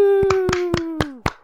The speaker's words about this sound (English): Claps for joining.